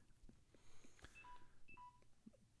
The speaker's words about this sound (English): Is your phone mad? I guess my phone is mad. My phone's dying.